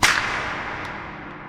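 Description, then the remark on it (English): A single sharp whip crack, made by a man swinging a whip above his head and waving it towards the fork in a river, snaps out at the very start, a bright, loud burst followed by a long hissing tail that slowly fades away. No one speaks. “All the way through, he swings his arm, lifts it above his head, fluidly waves it towards the fork in the river”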